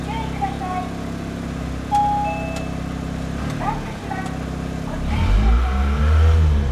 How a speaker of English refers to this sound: Stop revving it, dude. I can't help it. Carbon monoxide poisoning. Hey, what is that sound? Stop. Okay, all right, I'll stop.